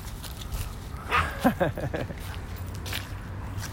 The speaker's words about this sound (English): Hold on, I got to keep two little chihuahuas from fighting. No, don't fight with other chihuahuas.